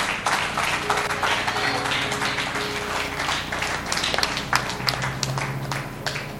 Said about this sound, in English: Rise to your feet. Clap your hands for Jesus.